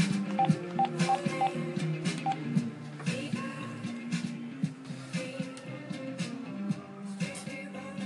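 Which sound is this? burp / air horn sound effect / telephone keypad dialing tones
telephone keypad dialing tones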